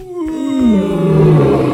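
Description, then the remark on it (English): A lion's roar from a high-fidelity recording of the MGM lion roar: one loud, drawn-out, throaty call whose pitch slides downward, rich in harmonics and sounding more like a yawn, heard alone with no talking. “Though you see the lion mouth open wide, once I learned what that sound really is, it sounds more like a yawn than it does the King of the Jungle.”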